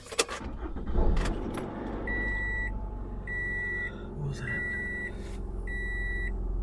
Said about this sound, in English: I don't know, I should turn on my car.